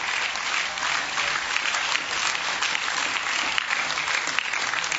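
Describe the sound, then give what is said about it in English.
An audience claps steadily for about five seconds as names are read out one by one at an evening event, a dense, even wash of many hands with no pauses or build, holding at a constant moderate level. “I'll clap for him anyway, it's all right.”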